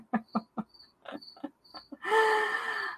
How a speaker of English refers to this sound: Nothing I can do about that cricket, but I cannot believe it's still alive.